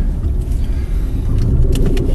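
Steady low rumble of a car driving, heard from inside the cabin, with continuous engine and road noise and a few faint higher clicks or rattles.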